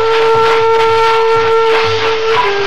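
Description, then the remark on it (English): A train brakes as it slows on arriving at Laramie, a loud, steady metallic squeal ringing over a low rhythmic rumble of wheels, with the pitch dipping slightly near the end. “The brakes are applied and the train slows down.”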